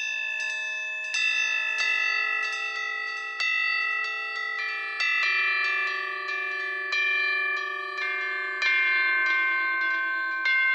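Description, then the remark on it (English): Bright synthesized bell-like chime tones ring out in a steady melodic sequence, each strike overlapping the lingering shimmer of the last, forming a continuous resonant texture with no voices. “Another trick I use to convey this Eastern sort of sound is the choice of using bell sounds, bell or chime sounds.”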